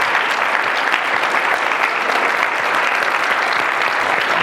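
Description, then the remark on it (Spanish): An audience applauds steadily for a guest, many hands clapping in a dense, even wash of sound that stays loud throughout with no voices standing out. “Si los pedimos a Adam con un aplauso. Un aplauso, por supuesto.”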